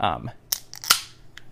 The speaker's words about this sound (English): Whoa! Bullet sounds. It says metal on the screen, and then a U and an N pop in. Now it says unmetal, and it's kind of in like a fuzzy, pixely kind of a style.